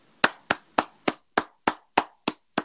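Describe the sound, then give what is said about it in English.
A single pair of hands claps nine times in a steady, brisk rhythm, each clap sharp and fairly loud, with no voices. “I applaud you.”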